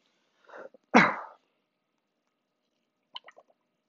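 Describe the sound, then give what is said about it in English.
A loud cough bursts out once after a brief throaty lead-in, followed by a few faint, short clicking sounds in otherwise quiet surroundings, with no talking. “Can't stop coughing, fuck.”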